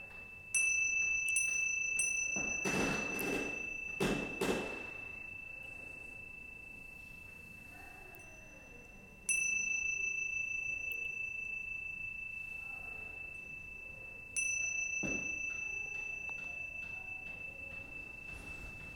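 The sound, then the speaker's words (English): A meditation bell is struck three times, each bright, high-pitched tone ringing out and slowly fading over several seconds, with a brief rustling noise after the first strike and no talking. “Notice it moving through the sound of the bell.”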